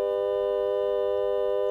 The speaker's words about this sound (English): We do not hear the three sources until micromodulation provides for differentiation. Three fundamentals, pure tones, a pure triad.